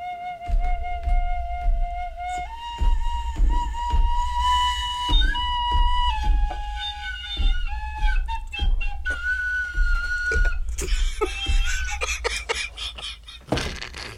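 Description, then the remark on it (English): A tin whistle plays a wavering, halting melody of sustained notes, ending in shrill, squeaky overblown tones, with low rumbling thumps underneath and no one speaking. “Hey, I just smoked my cigarette through the tin whistle.”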